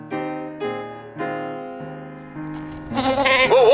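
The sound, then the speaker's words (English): A female goat bleats in a quick series of short, wavering calls, building to a louder, strained cry at the end, as she is being held and steadied, with no talking. “Whoa, hold her. Steady, girl, steady.”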